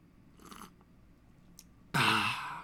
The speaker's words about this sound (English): hold on, I'm going to sip my coffee.